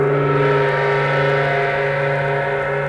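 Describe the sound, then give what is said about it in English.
An odd, droning tone from Mr. Invento's doorbell holds steady and loud for the full three seconds, a rich buzzing chord with layered pitches and no break or voices. “Invento always has the strangest doorbells.”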